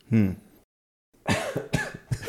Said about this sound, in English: My coughing is clearly a part of my whiskey tasting style.